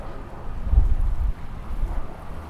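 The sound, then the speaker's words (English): A low, steady rumble of an airplane passing overhead, swelling slightly before easing off, with no one talking. “It's a plane overhead, you might be able to hear.”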